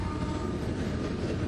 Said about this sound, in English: It's a freight train coming through. Another cool feature of our town. Well, you know what? Looks like a long train